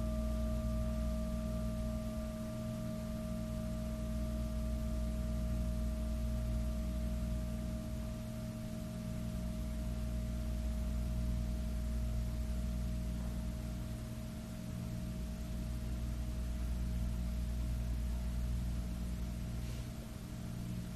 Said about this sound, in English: Consciousness of sound of bell is alive now if you're in the right range.